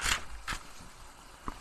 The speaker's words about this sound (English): Where they at? I'm shuffling through the pages.